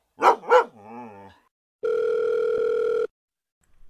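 A dog gives two quick, sharp barks that trail into a brief whining yelp, then a steady, loud telephone dial tone hums for about a second. No one speaks.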